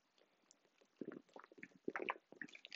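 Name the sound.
person chugging water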